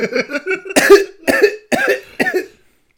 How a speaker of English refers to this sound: I'm just looking at the 6 feet of space everywhere else. I'm real close to just start coughing on niggas.